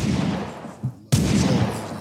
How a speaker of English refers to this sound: So listen, let me just throw the little gunshots in there real quick.